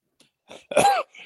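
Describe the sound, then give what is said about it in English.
A brief throaty rasp followed by one loud cough, then a faint breath; no talking. “Sorry, I'm going to hit the cough button.”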